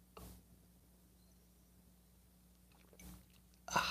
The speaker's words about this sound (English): Fill it with your favorite liquid. I like coffee. And join me now for the unparalleled pleasure. It's the dopamine hit of the day. It's the thing that makes everything better. It's called the simultaneous sip. And it's going to happen now. Go.